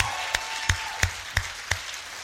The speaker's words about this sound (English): Hey, I want whoever's in CFTS this year to stand up, and we're just going to give them a round of applause.